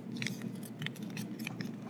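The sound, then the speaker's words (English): Crisp paper crinkling and rustling in several short bursts as a sheet of paper is creased and folded in half again and again, over a steady low background hum with no talking. “A sheet of paper. Oh, you're going to try it? Yeah. One fold.”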